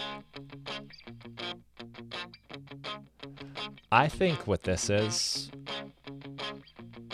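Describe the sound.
Electric guitar, a Fender Strat played through a Fender Deluxe amp with a tiny bit of spring reverb, plays steady, rhythmic chords; a voice briefly talks over the middle before the playing continues.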